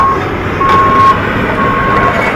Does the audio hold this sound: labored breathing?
no